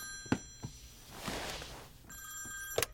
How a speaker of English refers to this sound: I didn't think you were going to pick up for a minute. It was ringing that long.